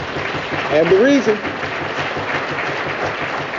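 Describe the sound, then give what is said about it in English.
A crowd claps steadily in a dense, continuous patter of many hands, with a brief high whoop or cheer rising over it near the start before the applause carries on evenly. “And I'm going to ask somebody to clap for that.”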